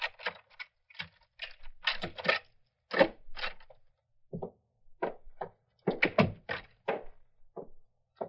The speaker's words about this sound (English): Here's the house, Mr. Chameleon. I'll give you my key. Let me open the door